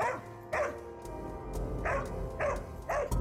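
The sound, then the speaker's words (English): A big dog barks several times in short, irregular bursts, loud, with a low rumbling background and no voices. “There were claims that he attacked them and that he also took the shape of a large black dog.”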